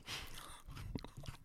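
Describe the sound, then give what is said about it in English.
Close-up crunchy chewing of a McVitie's biscuit, with irregular crackly bites and mouth noises right against the microphone, fairly quiet, with no talking. “I'm chewing into the mic.”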